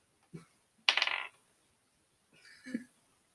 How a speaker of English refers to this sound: Stop shaking the table. I'm trying to stack my dice.